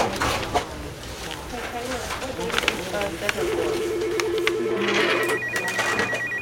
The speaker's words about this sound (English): Inside, phones are ringing off the hook.